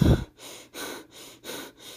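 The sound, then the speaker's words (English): A man's heavy, labored breathing: four loud, rasping breaths in quick, even succession, with short pauses between them and no talking. “She noticed his abnormal breathing.”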